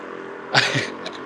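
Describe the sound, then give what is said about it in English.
A car engine revs loudly outside in a short, roaring burst that swells and fades within a second, heard over a faint background hum with no talking. “They're going crazy. There's no reason to have a car that loud.”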